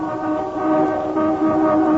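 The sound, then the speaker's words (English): A car horn blares in one long, unbroken blast in wet, stormy weather, a steady, buzzy, mid-pitched tone held at full loudness for the whole two seconds, with no voices over it. “Just stand the hooter.”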